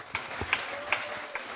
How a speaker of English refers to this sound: All right. You can clap your hands.